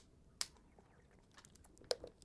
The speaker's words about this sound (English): Sip of water.